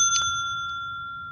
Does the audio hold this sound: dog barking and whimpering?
no